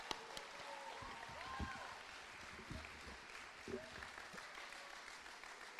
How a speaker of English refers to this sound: Okay, first of all, if you're a mother, here, stand up. I want to give you guys like all a big round of applause because you guys are what makes this happen.